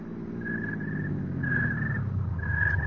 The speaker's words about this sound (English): I was getting back into my car. Edwards and the servants drove up.